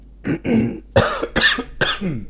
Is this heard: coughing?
yes